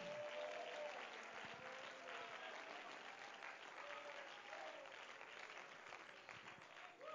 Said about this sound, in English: Oh, clap your hands and let's give praise to Him.